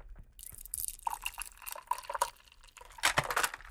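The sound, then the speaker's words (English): A frothy milk punch is poured from a shaker into a rocks glass without ice, a gurgling trickle of liquid with small splashes and drips that swells louder near the end, with no voices. “Now you're going to pour it into a rocks glass, but don't put ice in it.”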